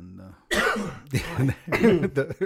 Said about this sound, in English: Sorry for the coughs. I'm getting over this random congestion attack.